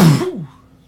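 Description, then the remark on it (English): A single sharp sneeze bursts out, loud and breathy, then trails off quickly into near silence. “Bless you. Thank you.”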